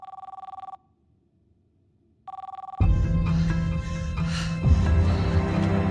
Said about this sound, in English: Pick up the phone.